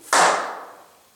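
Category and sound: human body sound, hand clap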